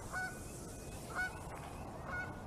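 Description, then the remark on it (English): Geese honk three times at a pond at a steady pace, about one call per second, each a short nasal honk rising above a constant low background rumble. “He'll say hi to the ducks.”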